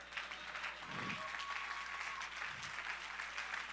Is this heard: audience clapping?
yes